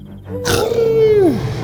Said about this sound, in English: let out a happy roar and wagged his tail.